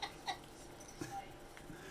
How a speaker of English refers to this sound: A little cockapoo. I enjoy that his first reaction was to stand and bark at it until you squeaked it.